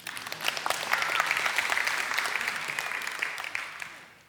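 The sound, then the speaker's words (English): People at a sermon clap steadily for about four seconds for the young man running the AV, a dense, moderately loud patter of many hands that swells briefly and then tapers off toward the end. “Give that young man a big round of applause.”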